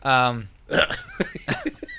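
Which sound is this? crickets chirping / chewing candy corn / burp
burp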